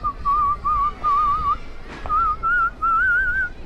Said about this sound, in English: No, I meant with your whistling. Huh? Your whistling. How do you get people to react that way to your whistling?